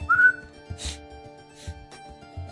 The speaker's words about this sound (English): I whistle.